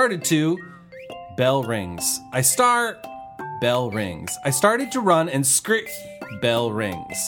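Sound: bell ringing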